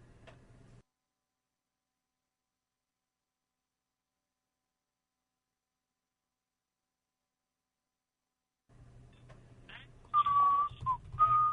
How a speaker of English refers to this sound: I'm assuming that was you whistling. Yes, that was.